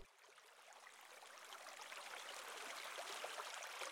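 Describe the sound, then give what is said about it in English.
Ocean water washing against rocks, a steady, hissing rush of surf that swells gradually and stays fairly soft, with no voices. “You fell asleep listening to the waves clash with the rocks.”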